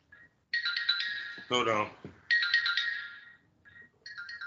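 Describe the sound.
A bright electronic doorbell ringing in repeated melodic bursts, high and fairly loud, with a brief voice speaking between the rings before the tone starts again.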